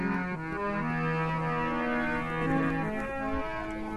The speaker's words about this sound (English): That's a traditional Indian harmonium you can hear there. Man sitting down, cross-legged, puffing away on his box.